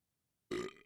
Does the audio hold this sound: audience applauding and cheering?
no